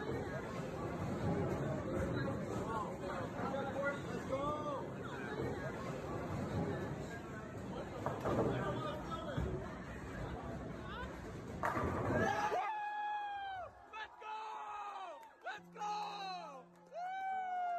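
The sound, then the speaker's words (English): A loud, excited crowd at a bowling alley shouts and screams together in a dense roar after a bowler finishes a perfect game, which suddenly thins out into scattered high-pitched whoops and shrieks from a few voices. “We see Phil bowl this perfect game. Everyone was so excited. They're screaming.”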